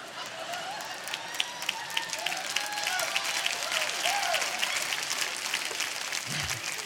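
A crowd applauds steadily for several seconds, a dense wash of many hands clapping at once, with a faint murmur of voices mixed underneath.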